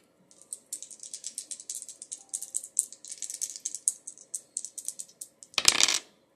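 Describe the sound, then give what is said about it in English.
Dice are rolled, rattling and clattering in rapid, uneven clicks for several seconds, fairly quiet, ending in a brief louder burst as they tumble to a stop, showing a total of 12. No one speaks. “Let's roll the dice and jump right into the mindful message.”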